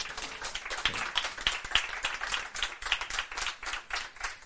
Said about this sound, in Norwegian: mine damer og herrer, gi han en varm applaus.